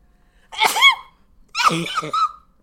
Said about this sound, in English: That is hurting the people's ears. Look at that. Do you see that? That's your sneeze.